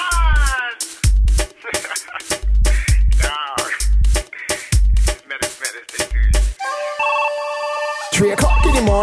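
telephone ringing

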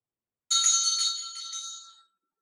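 bell being rung

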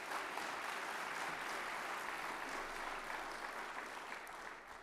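audience applause

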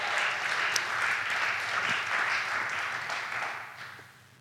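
applause

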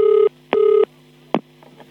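telephone keypad dialing tones

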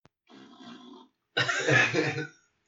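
fart into the microphone

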